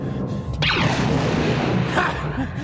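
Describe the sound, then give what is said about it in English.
Two blaster shots fired at the lock of closing blast doors ring out, each a sharp zap sweeping downward in pitch, the second one softer, over a steady, loud rumbling roar. “Whichever of those geniuses back there thought of having the blast doors shot ain't getting a promotion for it.”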